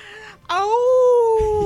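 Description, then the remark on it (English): A person gives a loud, sustained howl as an introduction, imitating a creature of the night, the voice sliding up and then holding a steady wavering pitch for over a second after a short quieter vocal sound. “Please howl your introductions to us.”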